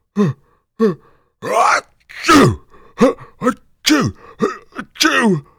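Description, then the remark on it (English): A voice acts out a story character with a very bad cold having a fit of sneezing: a run of short, gasping vocal bursts with falling pitch, breaking into three loud, breathy sneezes one after another. “Just as Fred started to open his mouth to speak, he let out a big sneeze, followed by two more.”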